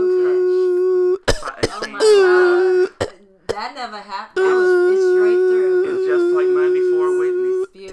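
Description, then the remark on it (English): A few sharp coughs from a singer burst out in quick succession, interrupting a long, steady held sung note that continues on the same breath and carries on loudly afterward. “I coughed and everything, and I was still on the same breath.”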